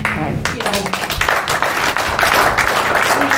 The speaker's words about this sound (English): Just about everybody where in that room clapped.